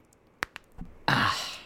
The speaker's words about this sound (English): No, I was cracking my knuckles. Really? Those are your knuckles? Yeah, I have pretty loud knuckle cracks.